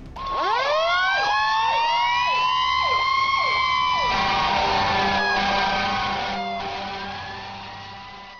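A fire engine siren wails, rising sweeps climbing in pitch and repeating rapidly, then settling into a sustained steady howl that gradually fades. Loud throughout, with no voices.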